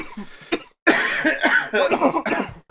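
A person coughs repeatedly, a couple of short hacks followed by a longer, harsh fit of several rough coughs in a row, loud and raspy with brief gasps between them.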